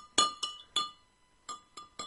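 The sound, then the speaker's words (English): A spoon stirs a glass of water with a couple of drops of food dye added, tapping the sides in bright, ringing clinks: three quick taps, a short pause, then three more. No one speaks. “So couple drops in the water, and then give it a little stir with your spoon.”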